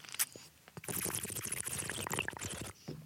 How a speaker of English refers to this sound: Wait, I got to take a sick bong rip. Oh, shit. Oh, my Here God. Here I go.